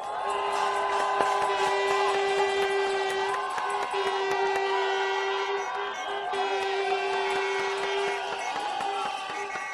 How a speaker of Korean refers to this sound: 자, 그러면 우리 촛불과 함께하는 촛불 국회의원단 분들을 큰 박수로 모시겠습니다.